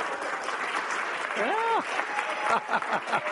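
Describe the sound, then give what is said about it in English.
An audience at Willow Bend claps in a steady, dense wash of applause after a speaker announces being engaged to be married, with a voice briefly calling out over it partway through and a few more voices joining near the end. “You ought to be applauding her.”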